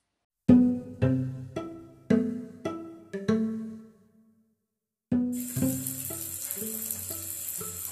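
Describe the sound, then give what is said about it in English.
A series of plucked, ringing musical notes, then a tap suddenly turns on and cold water gushes steadily and fairly loudly for the last few seconds while the notes continue beneath it. “Yes, the water pressure is very different here.”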